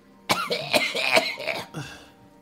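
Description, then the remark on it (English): A person lets out a harsh, raspy fit of coughing, several rough bursts in quick succession over about a second and a half, then trailing off into quiet. “So, when he goes to cough out, I want to grab his tongue, and I still have the scimitar, and I'll be like, if it wasn't for you having to testify, I'd cut this damn thing right out of your mouth.”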